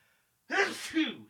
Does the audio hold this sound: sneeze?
yes